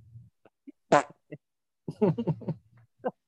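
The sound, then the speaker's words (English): Someone makes a wet, buzzing fart noise with their mouth, fairly loud, in a few short sputtering bursts with brief pauses between them. “That's a really good fart sound effect, whoever did that.”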